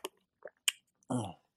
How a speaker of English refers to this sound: So for the last time, okay, I'm going to take a beautiful sip.